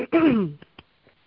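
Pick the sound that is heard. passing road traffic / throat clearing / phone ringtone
throat clearing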